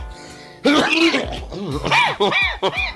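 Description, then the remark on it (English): A loud cough in a series of rough, raspy bursts, strained and almost growling, repeating in quick succession over a few seconds. “You got the worst best cough ever.”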